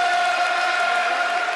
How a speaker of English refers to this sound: That's a quite a long time to applaud for a minute.